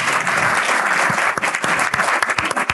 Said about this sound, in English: So let's give these guys another round of applause.